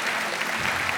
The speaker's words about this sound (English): Give these guys a big round of applause.